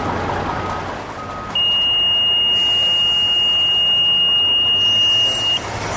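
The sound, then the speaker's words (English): A radiation detector alarm at a scrap yard gate, triggered by a small piece of cesium-137 in a Ziploc bag, sounds as one steady, high-pitched electronic tone held for about four seconds, loud and unbroken, over a constant outdoor rumble like idling traffic. “She triggers the alarm with a small piece of cesium-137 in a Ziploc bag.”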